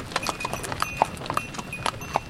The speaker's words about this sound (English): I hitched a ride with Mitko Dimitrov and his crew of woodcutters as they commuted to work up into the mountains on a horse-drawn cart